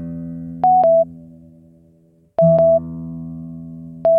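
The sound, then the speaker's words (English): A plucked guitar string (string 1) rings and slowly fades while a tuner's steady electronic reference tone sounds in short bursts, three times, each starting with a click; the string is being tuned and its tone matches the reference tone. No one talks. “So that's saying it's good because both tones were the same.”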